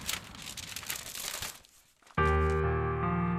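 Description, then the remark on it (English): Crisp crinkling and rustling of a paper letter being unfolded for about a second and a half, then a brief hush before sustained music swells in. “The letter's here. Darlene, I've missed you so much. Unfold the paper.”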